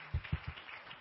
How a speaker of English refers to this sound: And everyone, give yourself a round of applause, everybody.